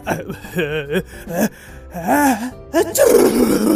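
A voice acts out a sneeze by the story character Alabaster: several drawn-out, wavering 'ah' breaths rise in pitch, then break into a loud, breathy burst at the end.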